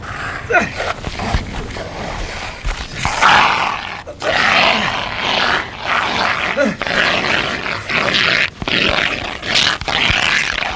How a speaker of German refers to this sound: Hier, ich habe den Feuerlöscher gefunden. Gut, Löschen.